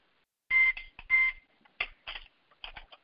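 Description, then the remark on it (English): A phone reminder alarm beeps: two short electronic tones in quick succession, followed by a few choppier chirping bursts, clear with no talking. “I have an alarm to go up to remind me of something.”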